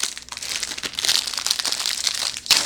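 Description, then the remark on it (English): The plastic wrapper of a chocolatey peanut butter pastry, meant for toasting, crinkles and crackles continuously as it is pulled open, a bright, busy rustling with a sharper crackle near the end. No one speaks. “Remove pastry from packaging.”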